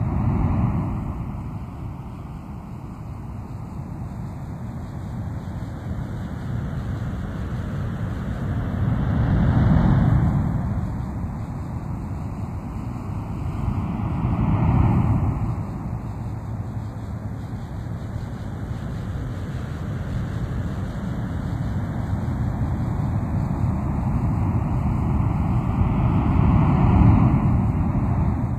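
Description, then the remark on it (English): Ocean surf rushes steadily, with waves swelling and breaking every several seconds over a constant hissing wash of water. No voices are heard. “As you listen to the sound of ocean surf, move your body into a more relaxed position.”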